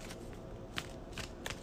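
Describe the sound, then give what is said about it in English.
A deck of cards being shuffled for a card game, a discard pile shuffled back into the deck, a few soft, crisp riffling snaps scattered over less than two seconds, quiet, with no voices. “All right, counter deck shuffled.”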